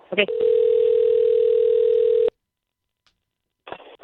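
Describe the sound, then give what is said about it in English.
A steady, loud telephone tone drones for about two seconds after a brief click as a phone call is placed, then cuts to silence before a short burst of line noise at the end. “Let's see if we can't get him on the line.”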